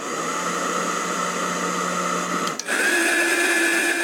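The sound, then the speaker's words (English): A hairdryer whirs steadily with a dense, airy drone, then clicks briefly and jumps to a higher speed as someone increases its speed setting, its motor pitch rising and holding. No voices are heard. “So one morning, I stepped out of the shower, dried off, picked up the hairdryer, increased the speed.”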